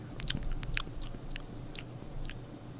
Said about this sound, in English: You'll be listening to me, you know, just drink a little bit more wine. You're going to hear me pour the wine, and then you're going to hear me sip the wine. I'm going to taste it a little bit.